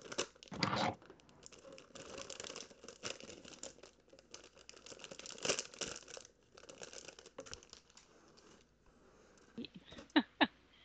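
Loud crinkling and crunching of cellophane-like plastic wrapping being handled and pulled open away from a microphone, with irregular bursts of rustling and a few sharp crackles near the end, no talking.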